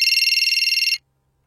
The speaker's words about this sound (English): You can do the last after the phone ring. Let me get a phone ring.